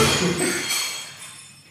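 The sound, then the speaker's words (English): At the end of a talk, cutlery and plates are dropped on the floor: a loud clattering crash, followed by bright metallic and ceramic ringing that slowly fades over a couple of seconds, with no voices. “And as you can see, the effect of the end of the talk has caused the person who's allowing us to work us to drop all their kind of cutlery and plates on the floor.”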